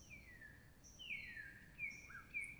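Faint bird calls outdoors, a few thin descending whistles and short chirps scattered over a low, steady background rumble, with no one speaking.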